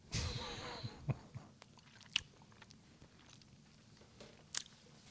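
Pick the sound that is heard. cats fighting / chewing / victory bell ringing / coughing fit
chewing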